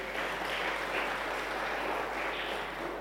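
A crowd applauds steadily for these young men, many hands clapping together in a dense, continuous wash of sharp patter with a few gentle swells, and no voices over it.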